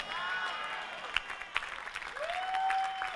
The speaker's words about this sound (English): Oh, the Lord bless those who are clapping and shouting for him.